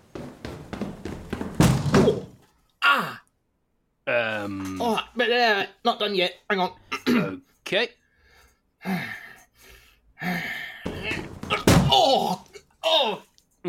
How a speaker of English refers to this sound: Yeah, that cracking sound. I'm hoping it's the lock, but I have a sneaking suspicion that it might have been your rib.